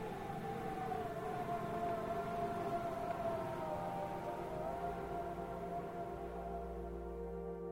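Wind whistles through a narrow gap in a door, a steady moaning tone that slowly wavers in pitch, joined by a deeper rumble toward the end. No voices.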